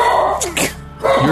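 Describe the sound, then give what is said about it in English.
A dog barks a few times, short sharp yips in quick succession with a brief pause before the last one, moderately loud, with no one talking. “Your dog disagrees with me.”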